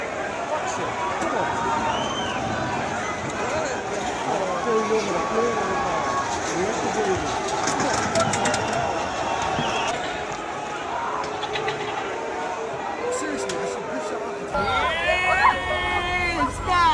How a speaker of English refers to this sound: Including the, I'm glad you sent me this, because the hoses used to disperse the crowd. That was pretty good.